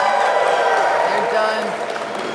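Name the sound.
audience clapping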